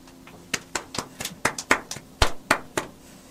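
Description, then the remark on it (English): Sparse, scattered applause: a dozen or so sharp, uneven claps from a small audience for a performer after his act on Halloween 2020, moderately loud, with no voices over them. “Let's give a big round of applause, please.”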